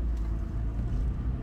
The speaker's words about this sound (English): and I am recording a podcast from my car as I drive, and don't look at my phone, but it's, like, a voice memo.